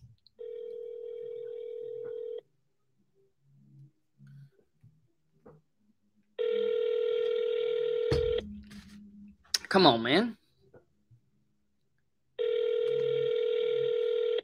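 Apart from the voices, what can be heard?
outgoing phone call ringing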